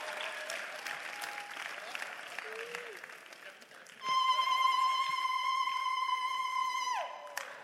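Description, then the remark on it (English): A church audience claps together, a dense wash of hand claps for a few seconds, then a loud, steady held tone rings out over the fading applause. “We'll be up and clapping.”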